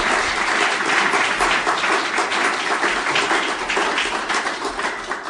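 A crowd applauds steadily, a dense wash of many hands clapping at once, holding a fairly even loudness for several seconds and easing off slightly at the end.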